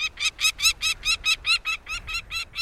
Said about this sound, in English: Northern nesting species of falcons, like this peregrine we're hearing, move southward, closer to their many admiring observers.